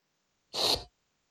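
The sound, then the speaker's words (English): One forceful sneeze bursts out abruptly, a sharp, hissy, explosive blast that cuts off quickly, loud against otherwise silent surroundings, with no talking. “I gotta say, that motherfucker has a powerful sneeze.”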